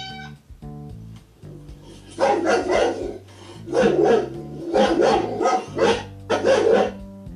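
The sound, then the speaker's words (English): A dog barks repeatedly in short, loud bursts, with a steady low hum running underneath the whole time. “The sounds that you heard came from cow, dog, and cat.”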